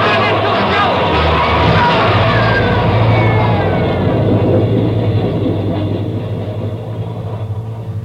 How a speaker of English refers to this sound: He's trapped, Ben. There's a train coming through.